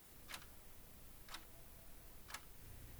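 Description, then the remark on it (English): A clock ticks quietly and steadily, three crisp ticks spaced one second apart, with only a low hum in between and no one speaking; two clocks hang side by side on a gallery wall. “Two clocks hang next to each other on the gallery wall, close but not touching.”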